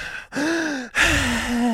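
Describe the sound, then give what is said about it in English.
Someone imitates their father's heavy panting while working out: three loud, breathy huffs with a strained, voiced edge, the last one drawn out like an exhausted exhale. “I wouldn't even know that he was working out except for the panting that was going on down there because he had 2 headphones in, and he's just...”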